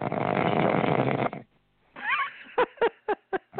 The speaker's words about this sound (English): Oh, that's the snore.